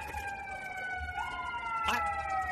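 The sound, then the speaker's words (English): A police siren wails outside, a steady high tone with harmonics that slides slightly in pitch, moderately loud over a low rumble of traffic, with a brief burst of noise near the end. “I think Drew Brees is coming in with a police escort.”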